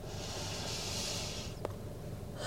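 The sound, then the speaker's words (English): A long, breathy, airy yawn, drawn out for over a second and ending with a small click, with no talking. “Or like me, letting out a yawn.”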